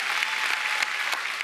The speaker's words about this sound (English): I think I'd clap a little harder than that. I think I might even shout and praise the Lord.